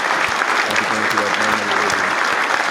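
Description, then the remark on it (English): A round of applause for Dr. Dre's health: dense, steady clapping from many hands that holds at a constant, fairly loud level for the whole stretch, with faint low voices murmuring underneath. “So let's go ahead and give a round of applause to Dr. Dre and his health, man.”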